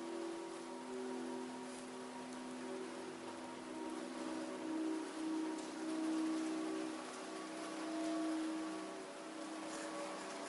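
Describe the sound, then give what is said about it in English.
Steady rain falls continuously, a dense hiss of drops on a surface, with a soft sustained tonal hum running underneath. No voices are present. “Let the backdrop of the rain help you tune in to the hip.”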